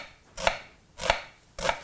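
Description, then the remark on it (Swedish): A knife slices through red onion onto a cutting board while vegetables are prepared for a pan, three crisp, evenly spaced strokes, with no one talking. “Nu skivar jag upp lite rödlök här.”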